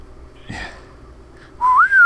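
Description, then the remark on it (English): A brief whistled tune enters after a soft thump, a clear whistle sliding upward through a few sustained notes, whistling the saxophone part of a song like a horn line, with no one talking. “Yeah, that's that was what I just doing. Whistled.”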